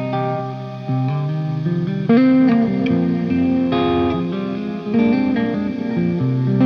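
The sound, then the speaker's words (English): A clean electric guitar played through an Old Blood reverb delay pedal with modulation plays sustained chords and notes drenched in a wide, shimmering reverb with delay trails and a wobbling modulation, each change blooming into the next, with no talking. “It's kind of like a reverb delay. Yeah, modulation. It's just like it's a pretty wacky reverb.”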